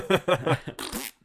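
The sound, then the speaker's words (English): A voice imitates a fart: a few quick buzzy, sputtering pulses followed by a breathy raspberry, fairly loud, lasting about a second. “Could you imagine if somebody did an Ari Aster movie where every sound effect of grossness was just replaced with a fart?”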